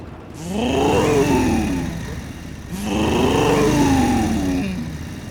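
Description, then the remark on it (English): A motorcycle exhaust revs twice, first a standard motorcycle exhaust and then a Thunder Pipes exhaust system, each burst rising in pitch then settling back, loud with a throaty harmonic growl and no voices. “For example, this is your standard motorcycle exhaust. And this is a Thunder Pipes exhaust system.”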